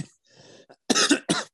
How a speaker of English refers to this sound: Excuse me, I have, I don't know, a cough, I guess.